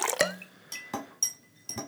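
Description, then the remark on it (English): Ice cubes clink into a glass of cocktail being mixed several times at an irregular pace, each hit a sharp, ringing knock with a brief glassy chime and light liquid sounds. No one speaks. “I'm adding these things first in an effort to mix it better before throwing the ice cube.”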